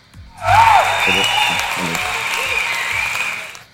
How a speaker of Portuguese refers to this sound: Então, mais palmas aí